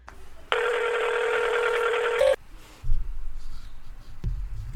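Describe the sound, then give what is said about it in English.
A Boost Mobile phone's ringing tone sounds once as a loud, steady, buzzy electronic note lasting nearly two seconds, ending with a short blip, followed by low muffled thumps and rumble. “So it's got the little beep going on.”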